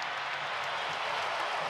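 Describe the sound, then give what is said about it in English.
A large arena crowd in Salt Lake City roars and applauds after a Utah Jazz player's dunk in a basketball game against the Bucks on a Sunday night, in a dense, steady wash of noise that holds at full strength for the whole moment, with no clear voices standing out. “And the crowd popping.”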